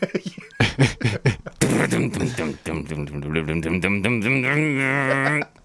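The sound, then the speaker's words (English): A person mimics a chainsaw starting with their voice: several quick sputtering bursts, then a sustained buzzing drone that wavers and climbs in pitch as if revving, cutting off abruptly. “You sound like you've been around chainsaws all your life, man.”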